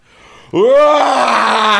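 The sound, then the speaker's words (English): After a brief hush, a person bursts into a loud, sustained roar, imitating the roar they made on being woken up; the voiced growl rises sharply in pitch, then holds steady and rough for over a second. “I think it's a great way to wake up with a big roar, right?”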